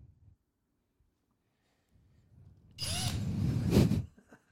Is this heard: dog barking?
no